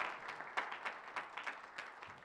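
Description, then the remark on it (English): Soft, scattered applause from an audience, a dense patter of irregular claps with a few sharper peaks, continuing steadily for a couple of seconds with no voices over it. “Oh, she'll clap.”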